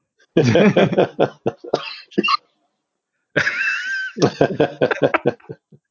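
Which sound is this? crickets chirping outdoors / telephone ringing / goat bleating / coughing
coughing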